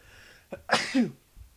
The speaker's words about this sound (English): Oh, I'm going to have to edit that out. Oh man, that sneeze.